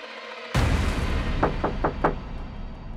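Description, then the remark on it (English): Four quick, evenly spaced knocks on a door, sharp, heard over a low rumbling background that swells in abruptly just before them. “Finally, hours later, at 9:45 p.m., there was a knock at the door.”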